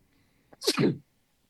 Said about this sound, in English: Oh. What was that noise? I sneezed. I'm allergic to that shot.